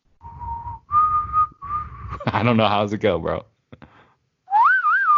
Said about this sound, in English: Can you try that Western whistling again?